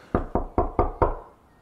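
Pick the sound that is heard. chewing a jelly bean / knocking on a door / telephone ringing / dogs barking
knocking on a door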